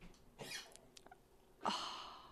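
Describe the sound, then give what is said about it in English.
A dog coughs after drinking water: a short raspy burst, a brief pause with faint clicks, then a longer, louder harsh hacking fit with a slight wheezy tone. “Now he's going to start coughing.”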